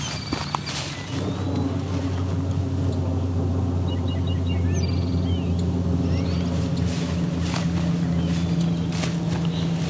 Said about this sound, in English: Is a natural area, but acoustically it's urban and it's deeply affected by the amount of people living around here.